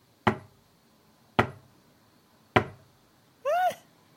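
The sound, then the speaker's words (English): Three sharp, evenly spaced knocks of a cane striking the ground, each about a second apart, followed by a brief high, wavering squeal-like tone. No one speaks. “And we see a cane on the ground being knocked, you know, on the ground like that.”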